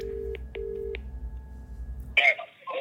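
Phone call tones: a steady low tone broken by three short, evenly spaced higher beeps, then the line cuts off as a voice briefly answers near the end.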